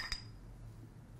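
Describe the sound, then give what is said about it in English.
A single soft, muffled clink of taped glass bottles tapped together in a toast, short and dull with a faint ring, followed by quiet room noise. “All the tape on the bottles like muffled the clink.”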